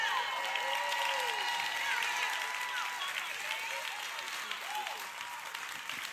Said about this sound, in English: Come on, that's 4.3. Come on, give that 4.3 a big round of applause.